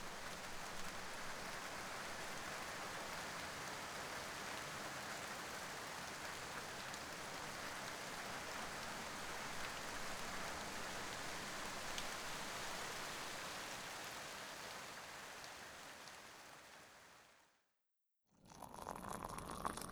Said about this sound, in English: Drinking it makes me feel like I'm sitting on a porch swing in the summer listening to rain, maybe in the evening.